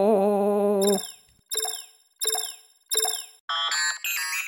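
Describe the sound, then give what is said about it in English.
A sci-fi pod door closes: a sustained electronic hum gives way to three sharp, ringing metallic clicks that decay quickly, then a bright cluster of synthetic chimes, with no talking. “The pod door closes with an eerie click.”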